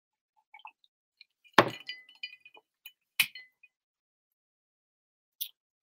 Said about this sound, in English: Now I'm going to take a sip of my scotch.